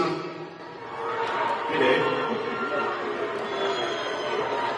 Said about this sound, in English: The crowd at the Chase Center booed loudly when the world's richest man was introduced.